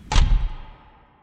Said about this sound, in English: It is tall, made of beautifully carved wood, and displays a hunting scene of hounds chasing after a fox under a crescent moon. You open the door, you enter, and the door shuts behind you.